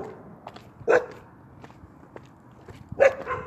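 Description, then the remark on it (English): Dogs bark twice, two sharp, fairly loud woofs about two seconds apart, with soft scattered taps and shuffling in the quiet between them and no one talking. “So they barking at me and looking back.”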